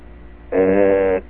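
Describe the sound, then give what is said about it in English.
A telephone rings once at Marie's place: a single buzzing burst of about two-thirds of a second, steady in pitch and fairly loud, with no talking over it. “I hear it ringing. It's ringing in Marie's place.”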